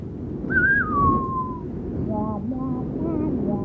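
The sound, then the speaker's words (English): Wind outside whistles against the eaves of an old house in a thin, wavering tone that rises then slowly falls, followed by softer fluttering whistles over a steady low rumble of gusting air. “As the remnants of your dream state dissolve into fading memory, you begin to hear the wind outside become more strident, almost whistling against the eaves of the old house.”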